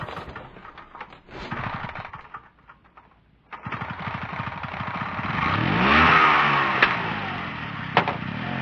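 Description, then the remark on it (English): A small vehicle engine that tops out at 45 miles per hour sputters and idles unevenly, then revs up into a steady rising whine as the vehicle pulls away, with riders aboard without helmets, a sharp click near the end and no voices. “No helmets? Not even one for me? Don't worry. This bitch tops out at 45 miles per hour.”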